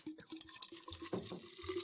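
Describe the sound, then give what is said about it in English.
Snoop Dogg wine being poured into a glass: a short, steady trickle and gurgle of liquid at a soft level with no talking over it. “We'll get a little pouring ASMR in the new studio.”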